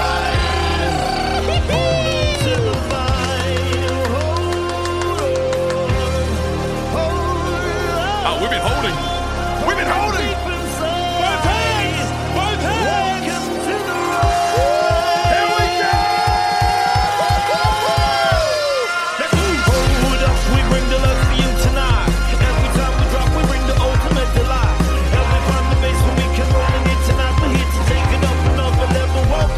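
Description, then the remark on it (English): A large stadium crowd roars continuously as fireworks go off and the crowd rises, with shouting voices layered over a dense, loud wash of noise and a burst of rhythmic thumping pulses partway through. “The crowd rises as one.”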